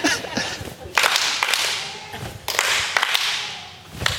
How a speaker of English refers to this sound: Who's got the loud clap over here? Nice job.